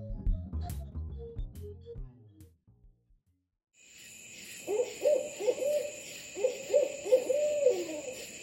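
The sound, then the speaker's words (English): A short musical passage fades to silence, then an owl hoots in two clusters of quick, wavering calls over a steady high drone of night insects. “Owls are age-old symbols of wisdom and knowledge, but they're also fascinating, elusive birds.”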